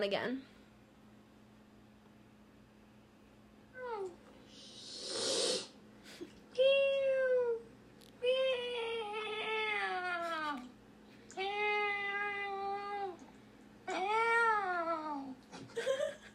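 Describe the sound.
A person imitates a cat as an entry in a meow-imitation competition, giving a string of drawn-out, wavering meows, some rising into whiny yowls, with a brief breathy hiss between them, loud.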